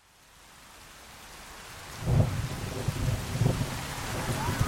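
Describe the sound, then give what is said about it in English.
Steady rain hisses on a cold night in southern Mississippi in December 1982, swelling in after a quiet start, with low rumbling thunder rolling underneath in a few heavier pulses. No one speaks. “It was cold and rainy on the night of December 3rd, 1982, in southern Mississippi.”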